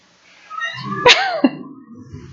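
person coughing

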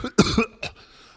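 cough

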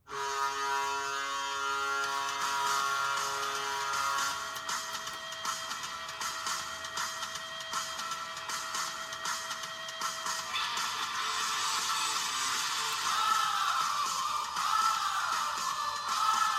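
hockey arena goal horn

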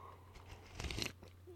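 sipping coffee

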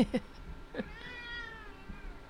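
cat yowling loudly

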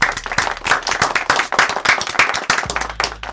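people clapping

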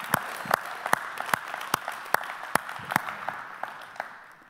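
audience clapping

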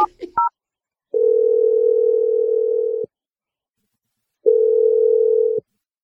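telephone ringback tone

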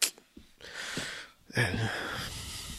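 heavy breathing

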